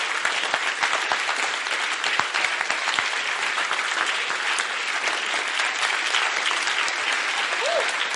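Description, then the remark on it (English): A church audience, standing on their feet, claps steadily and continuously, a dense wash of applause lasting several seconds, consistently loud without pause. “Your clap was weak.”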